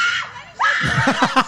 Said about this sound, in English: The screams.